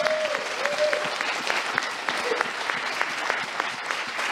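An audience applauds steadily, a dense patter of many hands clapping at an even level for several seconds, with a faint tone briefly sounding early on.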